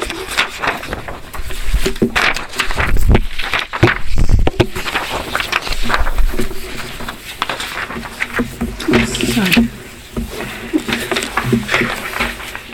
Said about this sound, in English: Here we go. I just heard a piece of paper.